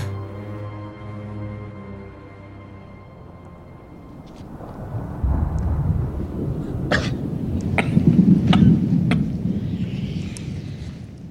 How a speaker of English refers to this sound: And he's just like coughing up a storm. He sounds like a Pappy before we clean up the tracks. He's basically taking big rips, man.